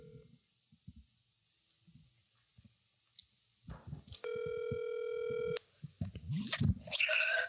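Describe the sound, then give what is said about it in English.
A phone on speaker places a call to the caller's dad: a few soft taps, then a single loud, steady ring tone lasting about a second, followed by muffled rustling and line noise. “Can you call your dad or uncle?”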